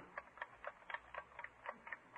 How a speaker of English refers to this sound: You see? You can't tell whether it's the watch ticking or somebody knocking on the door.